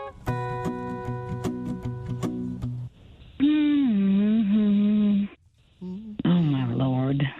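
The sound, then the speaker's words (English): A short run of sustained keyboard-like notes gives way to a person humming a song's tune, two steady phrases separated by a brief pause. “That was a good hum.”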